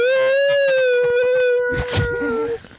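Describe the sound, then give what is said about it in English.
A heater gives off a loud, sustained whale-like howl, a steady moaning tone that holds for a few seconds, with a brief rattling burst near the end before it fades. “Does anybody else's heater do this?”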